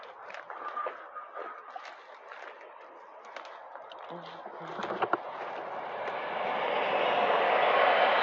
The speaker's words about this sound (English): That's the SEPTA train.